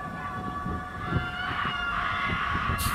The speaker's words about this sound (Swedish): Det heter alltså, Flogsta Scream, the real stuff. Yeah. Okej, okay, the real stuff. Det här vi lyssnar på nu. Flogsta skriker.